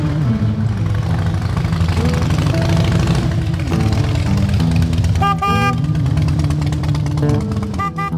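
Loud, dense New York City traffic with engines rumbling steadily while several car horns honk in short bursts, a cluster of blasts midway and another near the end, as motorcyclists ride through it.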